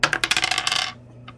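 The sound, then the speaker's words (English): Dice rolling on a table: a quick clatter of small hard dice tumbling and bouncing, a rapid series of bright clicks lasting under a second, then settling with one faint final tap. “26 on the dice.”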